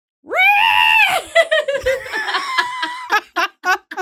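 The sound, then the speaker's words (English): A person imitates a horse's neigh: a loud, high voiced whinny that rises and holds, then breaks into a quick, fluttering series of shorter bursts, with no other talking. “30 minutes a day of me making horse noises in my room.”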